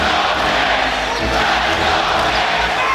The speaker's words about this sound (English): This crowd is bonkers right now.